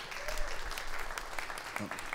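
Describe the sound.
An audience claps for a couple coming up to give their testimony, a steady, dense patter of applause, moderately loud and sustained for a couple of seconds, with faint cheers or voices mixed in.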